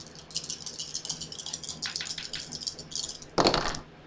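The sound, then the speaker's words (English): Four dice are rolled, rattling and clattering in a rapid string of small clicks for a few seconds, ending in a louder, sharper tumble as they land. No one speaks. “So I'm going to go ahead and roll my 4 dice.”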